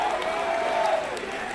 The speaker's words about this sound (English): I'm excited to announce that out of all these gentlemen you see up here, 10 of them are either freshmen or new to LaSalle. So let's give those guys a big round of applause.